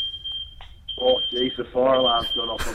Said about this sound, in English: Oh, geez, the fire alarm's gone off. Oh, no.